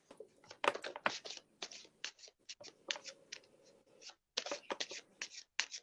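Cards being shuffled, a run of quick papery riffles and soft slaps in irregular bursts, with brief pauses between handfuls and no talking.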